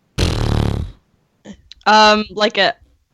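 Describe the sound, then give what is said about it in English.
A person imitates a horse's lip trill: a loud, sputtering burst of flapping lips, then after a short pause more buzzy, voiced vocal sounds. “If it's a horse sound, it's more of a. It's supposed to be more of a. Brrr, so it's supposed to be like a B, I guess.”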